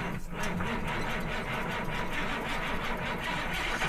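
A pickup truck engine runs steadily, a continuous low rumble with a faint rhythmic chug, fairly loud, with no one speaking over it.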